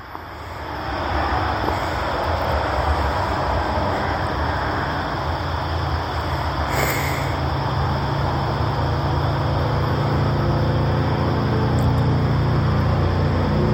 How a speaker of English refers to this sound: Cars are riding up and down. Here comes a motorcycle.